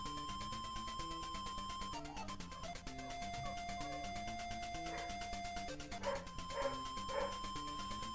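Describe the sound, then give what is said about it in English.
A dog in the house barks three or four times in quick succession toward the end, over steady chiptune-style video game music from Kirby's Dream Land that plays throughout. “The dog's not actually in the song. That was in the house.”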